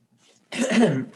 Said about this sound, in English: Sorry, I was like, I was like, I had to sneeze.